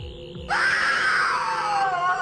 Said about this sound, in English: Well, there was that scream.